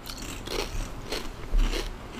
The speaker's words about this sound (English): Okay. There's a lot of crunch. It's very stiff. It's a very, like, hard barbecue flavor up front. Mmm. What I'm getting from it. It's not bad. The chip is, like, very, like, crunchy. Oh, well, it's kettle cooked.